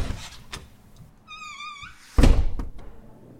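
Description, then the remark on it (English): A library door creaks open with a short, wavering squeal of its hinges, then shuts with a single loud thud. Brief faint clatter follows, and no one speaks. “Edith parks her bike and approaches the door.”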